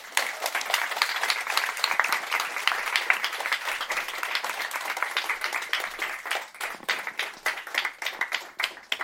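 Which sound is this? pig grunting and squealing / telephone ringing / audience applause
audience applause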